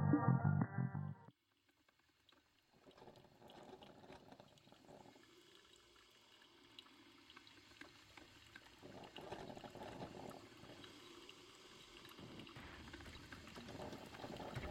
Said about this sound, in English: You wake in an empty hotel room to the sound of the coffee machine percolating.